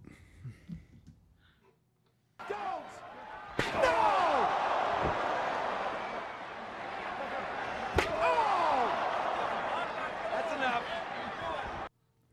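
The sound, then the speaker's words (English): Two sharp, loud chair shots crack out several seconds apart as The Rock hits Mankind with chairs in a wrestling match, over a roaring arena crowd, with a brief murmur of voices before the crowd noise swells in. “Was that The Rock hitting mankind with chairs?”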